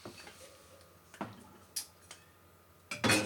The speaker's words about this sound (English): Okay. Sorry, glass bottles. You just got to be a little bit more careful how you load them in the fridge. Cans, pff, I don't care. Throw them in there and we'll do what we do. But bottles, I mean, they're durable, but they're still glass.